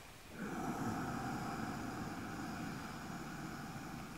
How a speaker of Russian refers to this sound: Два замка, и потом мы отпускаем замки и перекрываем правую ноздрю, выдыхаем в левую. С таким шипением.